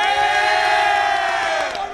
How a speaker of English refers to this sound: Speaking of yelling, can I get a cheer from the Blue Crew? Yeah!